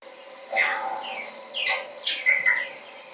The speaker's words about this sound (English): There are other birds there, and then at the end it sounds like a squawk.